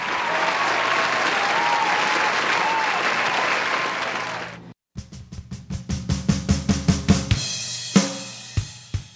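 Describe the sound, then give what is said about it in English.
A crowd bursts into loud, dense audience applause for a senior showgirl that holds steady for several seconds, then cuts off abruptly; a run of sharp, evenly spaced claps or beats follows. “Round of applause for our senior showgirl.”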